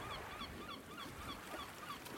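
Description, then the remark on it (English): Seagulls call repeatedly in overlapping, squawking cries over a steady, rushing wash of waves, at an artificial beach with sand and deck chairs set up for light therapy in a room on Södermalm, with no voices. “There was sand, the sound of waves, the call of seagulls, deck chairs, and light.”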